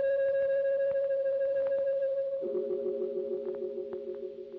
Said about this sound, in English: And there was the sound of a deep-toned bell, clanging thunderously once and echoing across the empty glade.